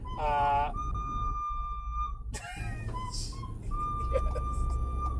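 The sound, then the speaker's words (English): A child plays When the Saints Go Marching In on a shrill, high-pitched instrument: a few held, piercing notes that step slightly up and down in pitch over a steady low rumble. “I love hearing kids playing music, dude.”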